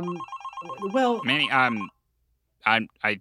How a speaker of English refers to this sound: The phone's ringing.